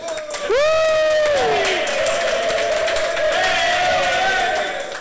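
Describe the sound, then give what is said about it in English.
A crowd erupts into loud cheering and applause as a vote for the first entry in a terrain-piece contest, opening with a rising high-pitched whoop, then a steady roar of shouts and clapping that holds for several seconds before easing slightly. “So for the first one, I want a loud round of applause if you think it's good.”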